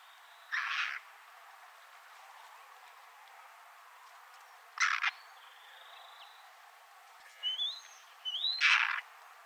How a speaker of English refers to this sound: And then let's listen to that chirping call of the white-tailed kite again.